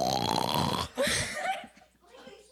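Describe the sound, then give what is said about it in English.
A person imitates a dog snoring with their voice: a rough, guttural rasp that cuts off briefly, then a second shorter snort that trails away. It is fairly loud, with no other sounds. “And then it snores.”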